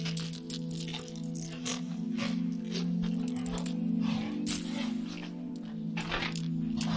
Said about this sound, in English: you hear something considerably more distressing. There is a kind of breaking, crunching.